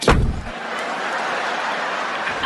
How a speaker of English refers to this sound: White people get out the car when the police get out. You hear two doors shut.